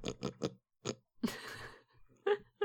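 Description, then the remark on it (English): A person imitates a pig with their voice: a quick run of short, throaty grunts, then a longer rasping snort and a couple more grunts, fairly loud with no talking. “It's one of my, like, weird little talents is I can make a pretty decent, like, pig sound.”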